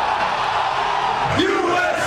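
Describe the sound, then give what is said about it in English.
A large crowd of soccer fans at the Port Authority bus terminal in New York City, watching on a giant screen, roars and cheers in a dense, continuous wash of noise as Team USA beats Iran at the World Cup, with a single voice whooping out above the din near the end. “Jubilation as Team USA claims victory over Iran at the World Cup.”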